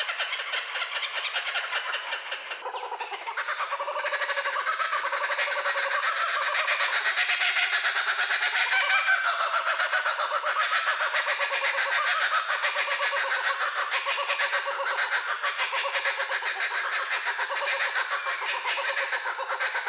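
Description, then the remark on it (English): A kookaburra's raucous laughing call rings out loud for about twenty seconds, a continuous cackling chorus of rapid, rising and falling hoots with no one speaking. “Yeah, may I also add that the German name for the kookaburra is Lachender Hans, which translates to Laughing John.”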